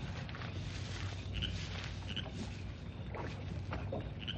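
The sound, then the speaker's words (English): Oars splash and dip rhythmically in lake water as a small boat is rowed out, with steady wooden creaks and soft watery sloshing, continuous, no voices. “He left the boat over there. I'll just row out and be sure of what he's doing.”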